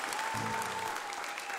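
A concert audience claps steadily for a singer in a dense, continuous wash of applause, filling the whole moment with a brief low tone underneath.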